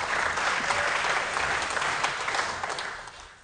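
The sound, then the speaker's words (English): An audience applauds steadily, a dense wash of many hands clapping at a fairly even level that tapers slightly toward the end, with no voices standing out. “I think you give that some applause.”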